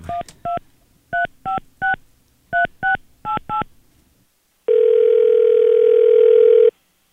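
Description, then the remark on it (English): A phone number is dialed to call the AA about a broken-down car: about ten quick touch-tone beeps in uneven bursts, then a short pause and a steady, loud tone lasting about two seconds. No one speaks. “Let's call AA this morning.”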